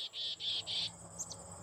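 Crickets chirp in three steady, high-pitched pulsed bursts, followed by a couple of brief fainter chirps, over a low background hum with no talking.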